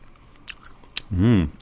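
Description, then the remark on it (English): Chewing on gumballs from a gum machine, small candy-coated rectangles about a quarter of an inch: two crisp, brief crunches about half a second apart, then a short hummed voice sound near the end. “It tastes exactly like you would imagine gum coming out of one of those machines.”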